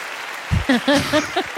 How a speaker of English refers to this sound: Marshall, our producer, gave us a round of applause as sound effect last time, and I appreciated it.